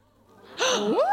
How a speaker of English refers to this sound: I like to gasp at that.